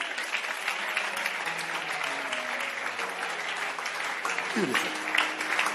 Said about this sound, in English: Clap for her.